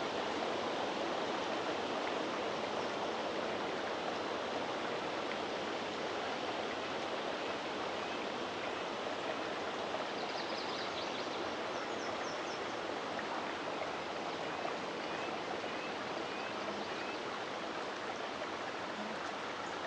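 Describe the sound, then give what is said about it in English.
Wind rushes steadily through the trees in a continuous, even roar that never lets up, with a few faint bird chirps briefly poking through midway. “It's getting a little windy.”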